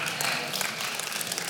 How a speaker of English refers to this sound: Oh, that didn't go over as big. Did you feel that clap?